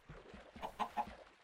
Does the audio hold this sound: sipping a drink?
no